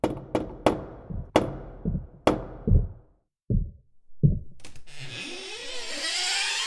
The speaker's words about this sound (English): Knock and see if the giant's home.